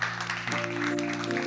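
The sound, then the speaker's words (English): A church audience claps in a steady, dense round of applause to encourage people coming up to the front, while sustained keyboard-like musical tones swell in underneath about a third of the way through. “And as they come on up, can you guys just give them a round of applause?”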